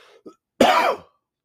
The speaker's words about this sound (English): So, the reason I'm coughing, unfortunately, is while we were walking around, I had a little, I think I can breathe underwater. And by underwater, I mean I was drinking a bottle of water.